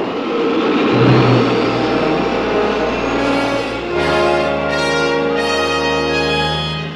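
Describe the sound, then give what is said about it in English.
A loud, continuous engine roar fills the scene, dense and rumbling, then shifts into rising whining tones with a few surging bursts, as the rocket engines of a spaceship fire and it heads up into space. “But we never get to find out, because just at that moment, we hear the sound of rocket engines firing.”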